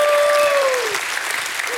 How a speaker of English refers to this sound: If you believe that you're privileged, give God a hand clap and a shout of praise.